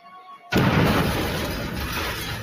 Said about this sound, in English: The explosion seriously injured the assistant and blew out the hearing of Dr. McConnell.